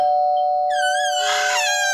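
A doorbell rings with a steady sustained tone, joined partway through by a wavering, warbling chime that swells briefly louder before fading back, with no talking.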